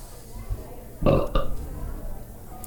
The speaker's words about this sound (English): Number two, was that a belch?